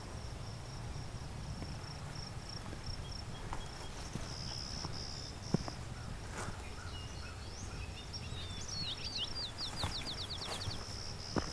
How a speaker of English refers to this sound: Alright, it's kind of a low-pitched buzz, buzz, buzz. That's clay-colored sparrow.